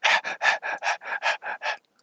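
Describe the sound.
A person imitates the dog Pet Pup panting and snuffling, with about nine quick, breathy huffs in a steady rhythm, then stops. The bursts are airy and fairly loud with no words spoken.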